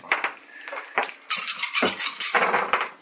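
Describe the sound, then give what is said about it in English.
Dice clatter and rattle across a hard surface in a quick, uneven run of sharp clicks, starting lighter and then becoming a louder, denser tumble before settling. “Right, you're not having my dice.”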